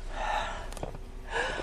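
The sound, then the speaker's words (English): A slow, deliberate breath drawn in and then pushed out, airy, with a short pause between the two halves and no talking. “But sometimes, and I'm gonna say a lot of times, we're in respire, which is breathing in and out.”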